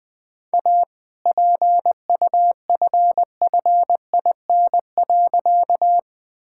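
Morse code sending all-age appropriate jokes at about 20 words per minute: a single steady mid-pitched tone keyed into quick, crisp dots and dashes, grouped with short gaps and no voices.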